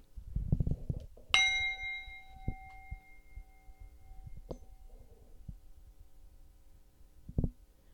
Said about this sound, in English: And I'm going to ring the bell as an invitation for us to join in together.